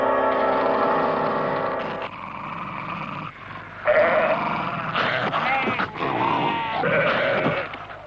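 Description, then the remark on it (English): A sheep bleats loudly and repeatedly, a series of wavering, drawn-out cries following one after another with only brief pauses, no voices alongside. “Oh, the sheep up there, I can hear him.”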